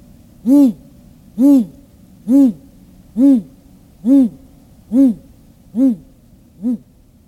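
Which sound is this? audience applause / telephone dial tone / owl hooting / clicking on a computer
owl hooting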